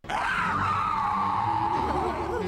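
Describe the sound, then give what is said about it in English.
A loud, sustained screech of an Aerodactyl in the Pokémon cartoon, voiced by a person as it roars at the group, holds a shrill wavering pitch for over two seconds before warbling and breaking toward the end, alone with no talking. “an Aerodactyl swoops in, hits Charmeleon in the head, and then roars at the group with a really good screech”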